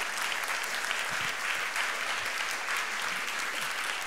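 Sustained applause from an audience, a dense wash of many hands clapping steadily at an even volume for several seconds, with faint voices mixed in underneath.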